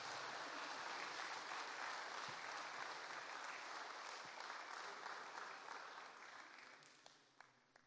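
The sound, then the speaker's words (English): A crowd claps steadily in sustained applause as families are welcomed to the front for a baby dedication, then thins out toward the end into a few scattered final claps. “So can everyone give everyone a big round of applause?”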